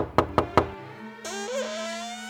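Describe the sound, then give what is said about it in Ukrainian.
Three firm knocks on a wooden door in quick, even succession, as Isaac knocks on Ruthie's door, followed by a soft, sustained musical tone that rises and holds. “Запах був такий чудовий, що Айзек не втримався і постукав у двері Руті.”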